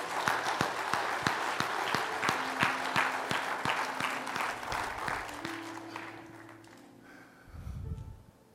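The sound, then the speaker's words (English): A church audience gives God a clap offering, a dense wash of many hands clapping with some steady rhythmic beats, loud for about six seconds before thinning out, with a low tone rising near the end. “Can we now give God a big clap offering?”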